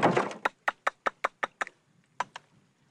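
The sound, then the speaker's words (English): A burst of rough scraping gives way to a steady series of sharp, hollow taps on an oyster shell, checking whether the oyster is dead, about seven in a row, followed by a short pause and two more taps. “You can hit on and feel it. Now, see, a good oyster, you don't have that sound.”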